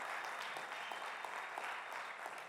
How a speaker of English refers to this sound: So come on, one more time, honor them, give them a round of applause. Thank you guys, good to see you.